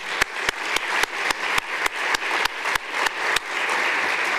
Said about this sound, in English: Let's give our sponsors a round of applause, please.